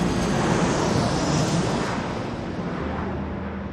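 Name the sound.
airplane engine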